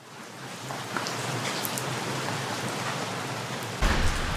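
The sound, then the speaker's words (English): Steady rain pours down on Ballarat Street, a dense continuous hiss with scattered droplet patter, swelling slightly louder near the end. No voices are heard. “I stand on the rainy street. The rain has cleared Ballarat Street.”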